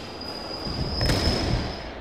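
A London Underground tube train rumbles past, a steady high-pitched whine riding over the low roar, which swells briefly in the middle before easing off. No voices.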